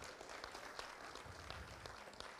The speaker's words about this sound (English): So thank you. We can applaud. I feel like we should applaud.